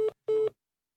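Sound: telephone busy tone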